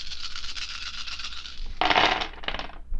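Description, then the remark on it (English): Fourteen picture dice are rolled to pick pictures at random for a story. They rattle and tumble in a light continuous clatter that swells into a louder burst of hard clacking before settling with a few final knocks. No one speaks. “So, I'm going to go ahead and roll them here.”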